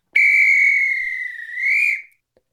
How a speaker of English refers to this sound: Okay, so I'll do the whistle to start us.